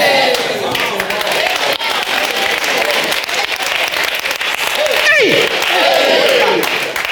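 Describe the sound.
A crowd claps steadily for the whole stretch, a dense, loud patter of many hands that never lets up, with some voices calling out over the applause.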